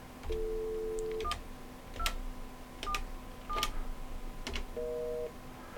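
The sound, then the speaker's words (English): Telephone dialing tones from a call attempt that fails to connect: a long steady tone, then several short beeps spaced by clicks, and another sustained tone at the end. Clear, with no talking. “I lost her again. I don't know what's happening with the phone here, but let's try it one more time.”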